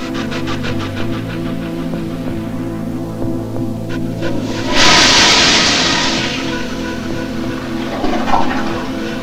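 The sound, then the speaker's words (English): A toilet flushes loudly with clothes and a shirt thrown into it, a sudden rushing surge of water that swirls and gurgles down over several seconds beneath a steady low hum, with no voices. “Now flush it.”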